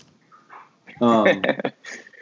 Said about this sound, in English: Since we're at home, we got dogs. I like my dog.